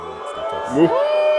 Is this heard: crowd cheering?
yes